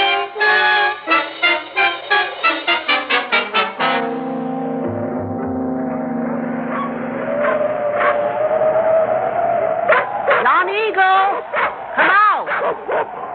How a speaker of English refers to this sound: Your dogs, call them off, please.